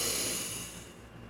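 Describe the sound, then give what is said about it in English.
A long, steady inhale through the nose during a guided breathing exercise, a soft breathy hiss drawn in over about a second that eases slightly toward the end, with no talking. “Inhale through the nose.”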